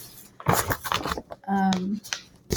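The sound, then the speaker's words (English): Crisp rustling as book pages are riffled and turned in quick bursts while someone looks for a page, followed by a short hummed murmur from a voice. “Here, I'm shuffling because I'm looking.”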